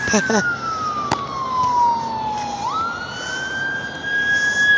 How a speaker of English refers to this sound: Y'all hear those sirens, right?